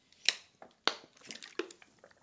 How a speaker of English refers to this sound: Had to get a little sip of water there.